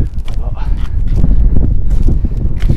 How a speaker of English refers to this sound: But just pre-warning, when I get up there in like a minute, it might be really windy. The wind's been buffering us a lot. Sorry, buffeting us.